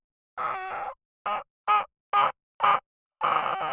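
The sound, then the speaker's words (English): A person imitates a turkey with their voice alone, without a turkey call device, making a series of clucking, yelping calls: a longer call, four short sharp yelps in a steady rhythm, then another drawn-out call, fairly loud. “Yeah, that's my turkey call without a turkey call device.”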